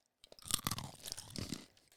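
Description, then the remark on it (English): Someone crunches on a sample of a dried dog ear dog treat, a run of sharp, dry cracking bites over about two seconds, moderately loud with no talking. “Yes, please try our dog treats as well. It's a dog treat.”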